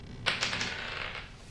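Dice, rolled to hit during a tabletop game, clatter across a tabletop: a few quick, sharp knocks followed by a softer rattling tumble that fades out. Fairly quiet, with no voices.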